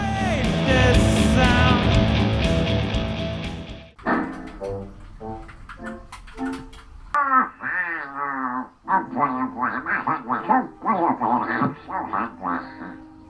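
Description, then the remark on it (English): A loud burst of music gives way to the squawking voice of the cartoon character Donald Duck, a run of raspy, quacking phrases chattering rapidly for several seconds. “that's Donald Duck serving you Nazi realness.”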